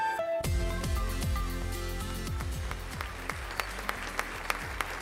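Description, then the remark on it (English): An audience breaks into steady, dense applause for thirty-two winners of the 2017 Whitaker Award at AT&T, holding for several seconds, layered over descending musical tones, with a few sharper individual claps standing out near the end. “Thirty-two people, one big round of applause.”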